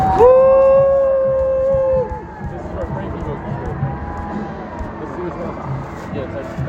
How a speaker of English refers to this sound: The dogs are barking back there.